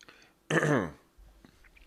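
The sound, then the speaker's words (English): A single sip of Powerade Zero sports drink, a brief wet slurp lasting about half a second, followed by quiet small mouth noises and near silence. No one speaks. “I'll have a little sip of this Powerade Zero.”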